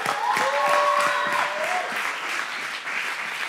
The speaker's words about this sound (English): Come on, give Jesus a clap.